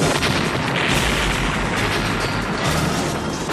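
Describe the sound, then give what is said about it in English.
A loud explosion roars and rumbles continuously, with heavy low booming and harsh crackling noise, as if a roof is being blown apart. No voices are heard. “Duck. The roof blows off.”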